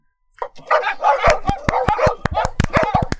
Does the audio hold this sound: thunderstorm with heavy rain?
no